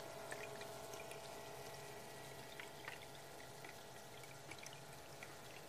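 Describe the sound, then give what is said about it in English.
A soft, steady trickle of water runs continuously, with small splashy drips popping out now and then over a low, even wash of sound. No voices. “Sound of a little bit of water trickling.”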